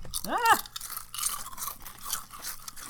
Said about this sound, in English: If you can figure out who was crunching which chip, we'll give you a free bag of Ruffles